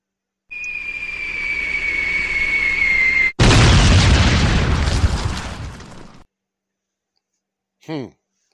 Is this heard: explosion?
yes